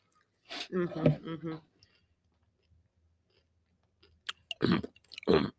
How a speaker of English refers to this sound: I can still hear you chewing. Oh, I'm done. It's my last one.